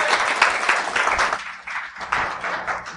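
A church audience applauds with steady, dense clapping, fairly loud throughout, dipping briefly midway before swelling again, with no voices standing out, as a high school freshman comes up to share at the morning service.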